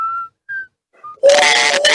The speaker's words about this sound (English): Or a train whistle.